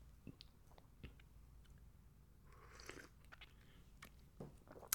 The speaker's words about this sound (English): Quick sip of coffee, boss. Another one. Don't mind me, boss.